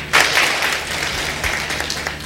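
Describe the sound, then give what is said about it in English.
A church audience gives the Lord a round of applause, many hands clapping together in a dense, continuous patter that holds fairly loud throughout, with a low hum running underneath. “So somebody give the Lord a clap off her right there.”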